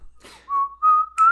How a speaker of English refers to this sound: Oh man, I hear the whistle. It must be the Globetrotters. No, young boy, it's the Monk Trotters.